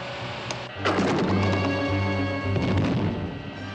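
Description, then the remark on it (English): A sharp burst sets off a loud, sustained rushing roar over a steady low droning hum, like a cartoon launch blasting off, as a remote control ejector button sends two stooges on a voyage into space, with no voices. “Here goes the remote control ejector button.”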